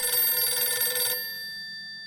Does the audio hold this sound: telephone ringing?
yes